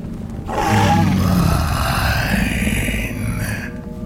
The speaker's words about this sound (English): It looked into my eyes and growled.